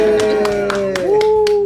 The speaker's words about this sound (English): See, I felt like that hand clap was such a fail.